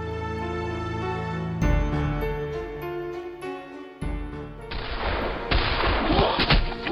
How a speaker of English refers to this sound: Gunshots cut through the fog.